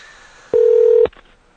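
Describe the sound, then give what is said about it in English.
A single steady electronic Skype outgoing calling tone sounds for about half a second, loud and clear with no talking, starting and stopping with a faint click, as an internet call dials out. “We called you on Skype today instead of the regular telephone because I was having some phone issues”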